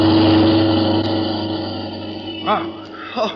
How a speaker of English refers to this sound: Hey, look at that car coming up the street, would you?